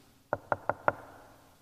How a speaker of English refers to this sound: And just as he's beginning to understand what this is, he gets a knock at the door.